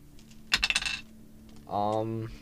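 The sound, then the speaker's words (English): Dice rolled for damage in a game clatter onto a hard surface in a quick burst of sharp, bright clicks lasting about half a second, followed after a pause by a short sustained vocal sound. “Damage, I'll roll damage first.”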